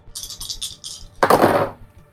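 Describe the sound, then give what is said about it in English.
Four dice rattle in a cupped hand for a moment, a quick run of clicks, then tumble loudly across a table in one clattering burst before settling, rolled during a tabletop role-playing game. “Okay, 4 dice for that.”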